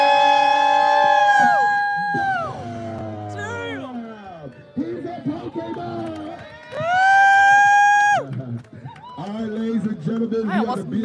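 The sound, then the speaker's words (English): A crowd whoops and yells loudly, with sustained shouts rising and falling in two big swells separated by busier stretches of overlapping voices and noise. “When we say make some noise, y'all make some noise. Everybody make some noise!”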